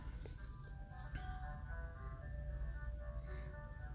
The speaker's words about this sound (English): Oh wow, well, two ice cream trucks coming in the same neighborhood at the same time. Now they petty.